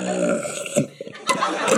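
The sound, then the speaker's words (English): A wet, gurgling raspberry blown into a glass of beer, a continuous low bubbly rumble with a few sharper sputtering bursts, sounding like a whale blowing underwater. “I mean, that's what a real whale raspberry would sound like underwater.”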